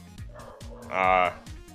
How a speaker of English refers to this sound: I don't know what they're barking at. I don't know if he's back or not with the van, but, anyway. Just wait till they stop.